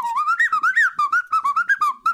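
A tin whistle plays a quick, lilting tune of short, bright notes in rapid succession, close and fairly loud, with no voices over it.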